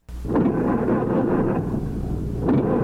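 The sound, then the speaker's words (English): The engine of Coach Art Turf's 1937 Packard cranks and starts right away, then runs with a deep, steady low rumble, its roar swelling in a few brief surges over about three seconds, with no voices. “Well, we're back on campus with Coach Art Turf as his 1937 Packard just cranking up. Coach, started right away.”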